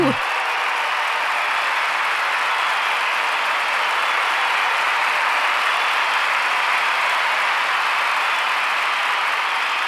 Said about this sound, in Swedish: Vi lägger en applåd